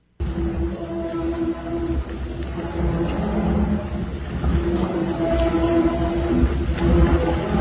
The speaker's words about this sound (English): Scary was talking about the Verrazano Bridge in New York swaying yesterday and had me shut down. But this is what the bridge sounded like, the sound it was giving off.